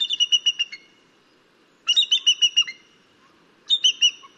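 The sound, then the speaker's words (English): Bald eagle calls: three bursts of rapid, high-pitched chittering whistles, each a quick series of piping notes separated by short pauses, clear over a faint low background rumble. “Nesting bald eagles like their privacy.”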